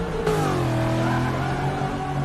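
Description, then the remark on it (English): A car driven by Trump on the Daytona track revs steadily and loudly, its low harmonic drone rising slightly in pitch as the vehicle drifts in reverse, with no talking over it. “I mean, it's just in reverse, just like drifting.”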